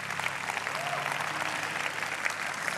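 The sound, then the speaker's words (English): A crowd claps steadily, a dense wash of many hands with no clear individual beats, holding an even, moderately loud level throughout without any voices on top. “Somebody put a hand clap on that.”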